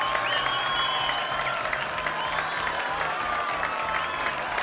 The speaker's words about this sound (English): So there you go. You can hear the crowd cheering and going wild for you while you hold up this sign.